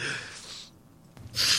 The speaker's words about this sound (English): Is her crying? Was that? Yeah. That's her sniffle. Her sniffle. Her sniffle cry.